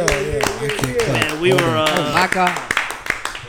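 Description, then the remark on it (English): Sharp hand claps snap out in a quick, uneven rhythm, applause for local hip-hop artists, mixed in with loud overlapping voices that carry through the whole stretch. “So clap it up for my homies”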